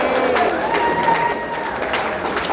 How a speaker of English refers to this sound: Can you join me to give them a big round of applause?